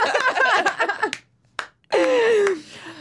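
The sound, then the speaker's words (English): A sneeze erupts in sharp, noisy bursts after a stretch of voiced, laugh-like vocal sounds, followed by a brief pause and more vocalizing. “Bless you.”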